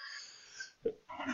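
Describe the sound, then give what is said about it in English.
A single sneeze: a drawn-in, wheezy breath, a short catch, then a sudden loud burst of air at the very end. “Bless you.”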